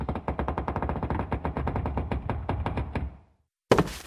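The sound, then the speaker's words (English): A long burst of rapid, loud rattling clatter runs for about three seconds as a safe door is eased open, stops briefly, then one heavy thump lands as a body that was leaning against the inside of the door tumbles out of the safe and hits the floor. “Something was leaning against the inside of the door.”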